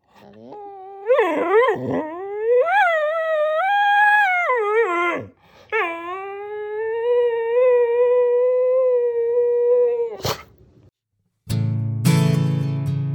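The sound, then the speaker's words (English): A dog named Kirby howls in two long, wavering cries, the first rising and falling in pitch, the second holding steady, followed by a sharp click and a short burst of rough noise. “This week's Diamond Dog submission is my dog, Kirby.”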